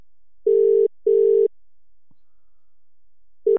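An outgoing call's ringback tone: two short electronic buzzing tones in quick succession, a pause, then the pair starting again, clear and steady, no voices.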